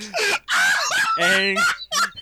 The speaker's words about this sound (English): angry camel noises.